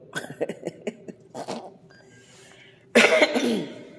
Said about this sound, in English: I'm sorry about this coughing. Y'all know I got allergies.